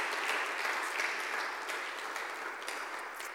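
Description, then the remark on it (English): An audience claps hands together in a dense, steady wash of applause, many overlapping claps blending into a continuous bright patter that holds evenly throughout with no voices on top. “Clap your hands and say a big amen.”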